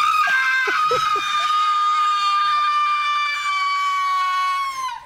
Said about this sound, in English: So the teacher's leading the class, and she says, and release all the sounds that are trapped in your mind. And he just lets out this scream.